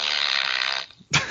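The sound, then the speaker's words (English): A loud, buzzy fart sound effect played from a sound machine sputters for most of a second, trails off, then a brief second burst of noise follows. No one speaks. “I got a sound machine, so I'm going to play a fart every time you say not, it.”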